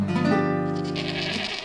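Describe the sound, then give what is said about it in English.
A goat screams in one long, loud, harmonically rich bleat that wavers and holds for over a second, unaccompanied by any talking. “The goat screamed, some fled, but one unlucky critter met its match.”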